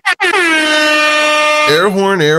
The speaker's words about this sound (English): Airhorn.